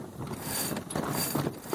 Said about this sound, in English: Right now, we are sailing gently along under a blue sky with the Dublin Mountains off to starboard. Dunleary Harbour behind us, and just the sound of the water and the boat as we adjust our sails.